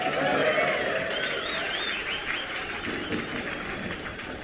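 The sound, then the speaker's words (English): A crowd applauds the crew steadily, with dense clapping, scattered cheers and whistles, and murmured voices mixed in. The sound stays loud and continuous throughout. “What about a round of applause for the crew?”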